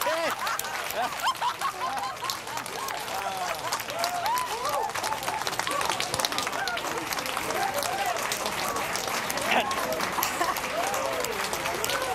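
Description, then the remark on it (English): A crowd at JPL and the Planetarium in New York bursts into sustained, loud applause as the InSight lander touches down on Mars, with excited cheering and whooping voices rising over the dense clapping throughout. “You saw the high fives at JPL, the applause also at the Planetarium in New York.”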